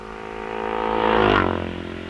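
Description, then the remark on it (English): The number 36 Norton racing motorcycle of R.J. Warburton from Stockport, its engine making a flat, uneven drone, swells as it passes by in a race, peaks briefly, then fades slightly as it moves away, with no voices present. “Now, number 36, with a very, very flat sound, whose engine, R.J.”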